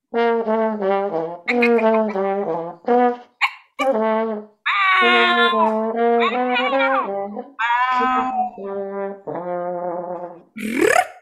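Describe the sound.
At a prize presentation, a professor mimics a cat with meows, trills and yowls while a trombone plays along, a first-ever performance surveying the communication sounds cats and humans use together, trading a steady run of tonal, sliding-pitch phrases that end in a sharp rising squeal.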